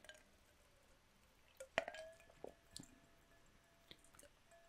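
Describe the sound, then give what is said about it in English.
A single bright clink of glasses rings out in a toast and lingers briefly, followed by soft wet slurping and small mouth sounds of someone sipping a drink over ice, all fairly quiet with no talking. “Cheers! Boost and Reviewed! Alright, let's see.”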